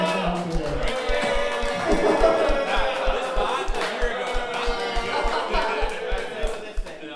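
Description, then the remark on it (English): A large crowd at a robot competition roars with a mixture of cheers and boos for the first-place winner, loud and sustained throughout, over a steady rhythmic low thumping. “What you just heard there was the first place winner getting a mixture of cheers and boos.”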